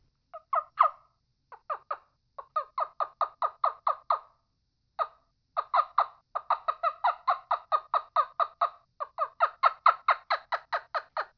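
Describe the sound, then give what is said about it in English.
A commercially made trumpet game call, not a very loud call, being blown, producing runs of short, raspy yelping notes in quick rhythmic bursts with brief pauses, finishing in a longer, steady sequence. No one speaks. “So there's the commercially made trumpet call, and this thing is, size-wise, is probably 2 to 3 inches longer than these ink pens, and I think that it sounds better.”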